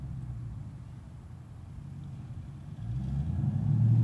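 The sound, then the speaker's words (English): A low, rumbling vehicle engine idles steadily, then its pitch and loudness climb as it revs up toward the end, with no voices present. “You heard that? The choice is yours. Room up the engine.”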